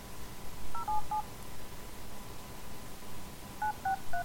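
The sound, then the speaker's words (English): A telephone number being dialed: short touch-tone beeps, a quick burst of two or three, a pause of a few seconds, then another rapid run of about four, over a steady low hiss. “Let me give this a bell then.”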